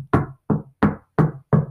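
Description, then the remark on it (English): Five firm knocks on a door in a steady, evenly spaced rhythm, fairly loud, each with a short resonant thud and nothing else in between. “Knock on the door, just like a doctor does.”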